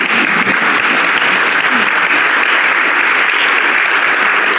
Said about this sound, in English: And with that, A big round of applause for our panel, which I'm going to let them introduce themselves individually, but thank them for being here.